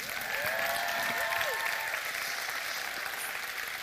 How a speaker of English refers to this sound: For a round of applause.